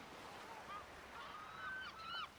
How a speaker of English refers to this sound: You can hear the seabirds calling.